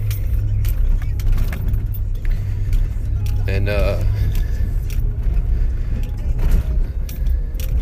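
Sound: car driving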